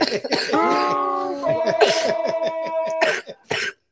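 Several sharp coughs burst out, spaced irregularly across a few seconds, with a steady humming tone running underneath between them.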